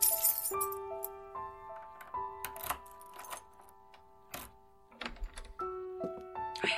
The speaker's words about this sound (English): I fumbled to get the keys out of my pocket.